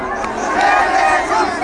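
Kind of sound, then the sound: crowd, protest crowd shouting chants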